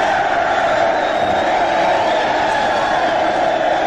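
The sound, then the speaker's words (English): A large crowd cheers for Jack Windsor, editor-in-chief of the Ohio Press Network, as he comes on AM 1420, The Answer, in a loud, steady roar that holds for about four seconds without a break, with no single voice standing out from the mass of noise. “Jack's cheering section follows him wherever he goes, and he comes right here now on AM 1420, The Answer.”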